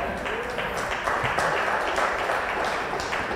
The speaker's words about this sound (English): We got 4 people clapping today instead of 3. Isn't that awesome?